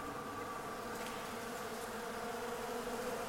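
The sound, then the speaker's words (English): A dense, steady buzzing of many hornets and wasps swarming, a continuous droning hum with layered tones that never lets up, with no voices. “Running about, being stung again and again by the hornets and wasps.”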